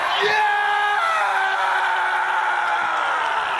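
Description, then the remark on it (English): A Russian man lets out a loud, blood-curdling scream that holds for several seconds, raw, its pitch sagging slowly toward the end with no other sounds around it. “The blood-curdling scream of a Russian man.”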